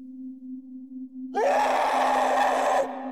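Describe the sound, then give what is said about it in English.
A low, steady hum gives way to a sudden, loud, harsh scream that holds for about a second and a half before cutting off, leaving the hum behind; heard at night in a field on the outskirts of an old mining village. “That's when we heard the first blood-curdling scream tear through the silence.”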